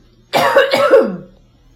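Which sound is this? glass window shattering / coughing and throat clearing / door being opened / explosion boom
coughing and throat clearing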